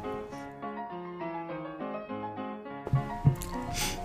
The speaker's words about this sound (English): Pour myself the classic large glass of wine. Mega pint, if you will.